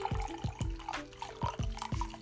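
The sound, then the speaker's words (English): Brewed hojicha tea, steeped for about a minute, is poured into a cup, with a steady liquid stream broken by several bubbly glugs at an uneven rhythm. Nobody speaks. “So let's go ahead and pour this out.”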